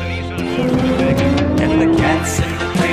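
A race car engine roars steadily, its whining pitch climbing as it accelerates, with loud, continuous motor noise filling the whole stretch.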